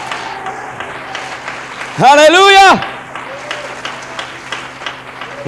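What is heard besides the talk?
audience clapping hands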